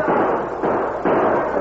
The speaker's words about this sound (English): As the waves of mounted Indians pressed forward, many of those in front rode back and forth, shooting at the stockade walls. The battle went on unabated.